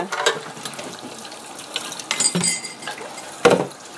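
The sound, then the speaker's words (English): Kitchen clatter of dishes being washed: scattered clinks and knocks of pots and cutlery, with a louder clank near the end over a faint background of running water. “I'm like doing the dishes now.”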